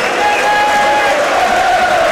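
crowd, football stadium crowd noise

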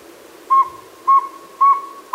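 bird, northern saw-whet owl call

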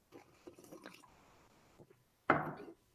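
food or drink, sipping coffee

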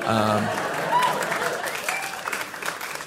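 crowd, audience applause

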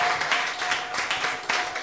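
crowd, audience clapping in praise

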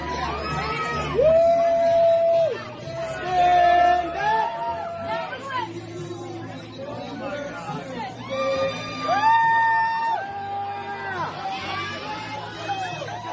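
crowd, crowd noise

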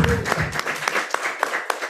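crowd, polite audience applause

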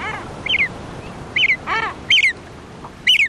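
bird, common murre calls

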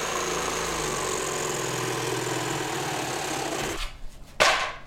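tool, saw cutting wood

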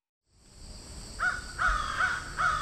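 bird, crow cawing

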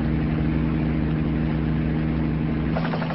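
vehicle, helicopter flying

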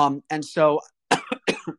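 human body sound, cough

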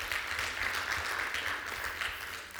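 crowd, round of applause

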